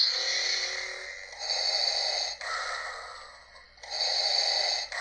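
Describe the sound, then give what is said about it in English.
A hissing, mechanical Darth Vader breathing sound from a toy cycles through about two slow inhale-exhale rounds, steady, with no talking. “Now, first, I'm going to play something for you, and it's very clearly going to be Darth Vader breathing, and I want you to tell me what I'm playing this from.”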